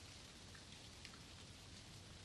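Light rain falls steadily in a soft, continuous hiss, with scattered faint drops pattering on concrete steps leading up to a cabin, and no voices present.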